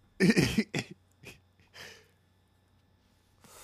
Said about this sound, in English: I just started coughing just thinking about all that tobacco you niggas is smoking and all the weed you're not smoking.